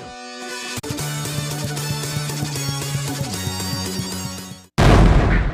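A short burst of bright, brassy music plays, then abruptly cuts to a loud cannon blast whose booming roar fills the final second.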